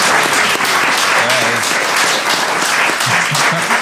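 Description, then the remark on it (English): A crowd claps steadily in a loud, dense round of applause for the two competing teams after round two of a game, with faint voices and cheers mixed underneath throughout. “Give them a round of applause there.”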